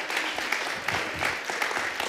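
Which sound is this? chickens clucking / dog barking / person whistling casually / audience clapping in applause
audience clapping in applause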